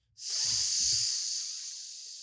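A sudden, steady hiss of escaping steam bursts in and holds for a couple of seconds, bright and airy, with a brief low rumble underneath at the start.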